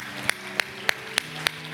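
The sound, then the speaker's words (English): A church audience claps hands in unison during a sermon, thanking God for His goodness, six sharp, evenly spaced claps on a steady beat, over a faint sustained low hum with no talking. “Oh, I think we ought to clap our hands and thank you for His goodness.”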